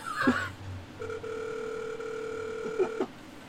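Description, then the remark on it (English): A telephone ringback tone sounds once through the line, a steady electronic buzz lasting about two seconds, preceded by a brief click and faint line noise, with no one talking. “The ringing? The dead air? At an hour in?”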